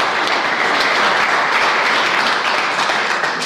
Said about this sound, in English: She's not here. So please applaud Roisin McMahon.